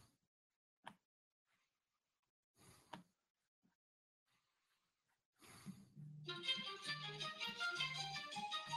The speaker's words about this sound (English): He's just breathing now, like a rhino.